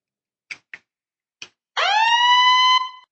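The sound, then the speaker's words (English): Three short, sharp clicks are followed by a single long, steady honk of a horn lasting about a second. The honk is loud, buzzy and constant in pitch, with no voices. “Yeah, can you want to honk the horn now?”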